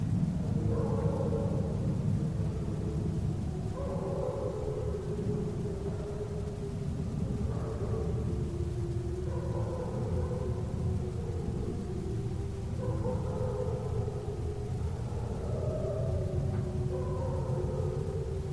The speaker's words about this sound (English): So this first audio clip is going to be what he referred to as the quote-unquote spook house howls.